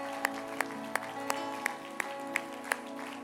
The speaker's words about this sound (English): If you believe it one more time, clap your hands to Jesus.